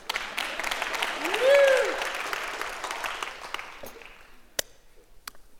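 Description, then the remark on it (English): An audience breaks into steady, full applause, with a brief whoop rising and falling over it, before the clapping thins out into a few scattered claps and fades. “If you clap again, I can drink.”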